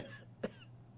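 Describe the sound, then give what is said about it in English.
A single short cough from a person who is ill, coughing, sneezing and sniffling, standing out sharply against a quiet, faintly humming background with no talking. “I'm coughing, sneezing, sniffling.”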